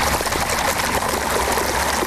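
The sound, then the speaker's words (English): Water gushes steadily from a hose in a loud, continuous rush with a bubbling, splashing texture, unbroken for the whole moment, with no voices; the hose is one of many working against flooding in the hamlet of Piers after days of heavy rain. “This hose is one of many working to keep a community above water.”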